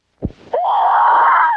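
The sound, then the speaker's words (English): A woman lets out a long, loud, sustained scream that holds steady for over a second, preceded by a brief low thud and a sharp intake of breath, in the trailer for the 1970 film The Bird with the Crystal Plumage, directed by Dario Argento. “Footsteps on the stairs, a shadow under the door, a reflection from a knife, and all the screaming in the world won't help.”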